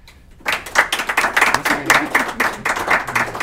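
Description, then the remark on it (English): An audience at a payments and blockchain event in Seattle bursts into applause for the speakers after a brief silence: many hands clap in dense, overlapping bursts that stay steady and fairly loud to the end, with no voices heard. “Please give our speakers a round of applause”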